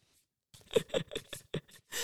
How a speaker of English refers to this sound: I'm just shuffling cards here.